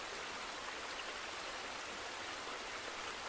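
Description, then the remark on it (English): A steady, unbroken rush of flowing river water, a soft hiss spread evenly with no pauses or distinct splashes, fairly quiet and even throughout, with no voices. “What do you think of the river? It's beautiful, isn't it?”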